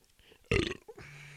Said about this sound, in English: Damn. Burping like a bitch. It's because these White Claws, G. Them shits bloat you and shit.